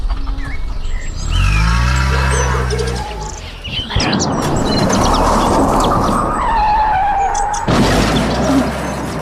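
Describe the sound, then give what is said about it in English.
A car engine revs up loudly with rising pitch as the car drives off, then gives way to a sustained rushing, splashing roar, with faint bird chirps scattered over the top. No one speaks. “That looked like the car is drowning in the lake.”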